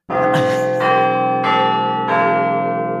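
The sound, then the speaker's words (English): Four deep, resonant Big Ben-style clock bell chimes ring out one after another at a slow, steady pace, each note sustaining and overlapping the next, loud, with no voices, played on Phoenix FM when a guest's name is said. “And joining me for such a task is the only man I know who chimes like Big Ben every time somebody says his name.”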